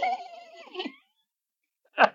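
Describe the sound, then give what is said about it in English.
A high, warbling squeak like a small rodent's call, a sound effect for a gopher, wavers for about a second, then after a brief pause a short, sharp squeak bursts out, fairly clear. “I don't know if that's what gophers sound like.”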